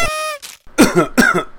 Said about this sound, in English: Let me clear my throat. I really was not ready for that.